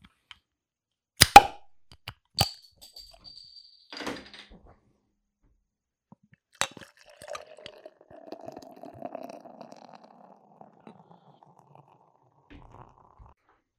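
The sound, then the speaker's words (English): A couple of sharp clicks and a pop, then Bell's beer glugs and splashes steadily into a glass for a few seconds, fairly quiet, with no one talking. “Beer is poured out.”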